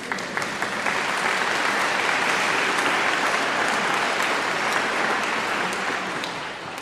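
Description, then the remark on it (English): A crowd applauds steadily for several seconds before the sermon at a church service, a dense wash of many hands clapping at an even, sustained level before easing off slightly at the end. “I didn't say that to get an applause.”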